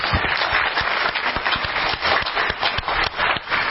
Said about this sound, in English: Let us honor these important people in our lives, our fathers and those father figures that have made such a huge impact on our lives. Let's give them a hand of applause.